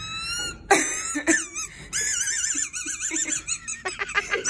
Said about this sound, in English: How is that possible? Is it stuck in his... He's talking, and yet the squeaky toy is squeaking. Yeah. Where is it? It's in his esophagus.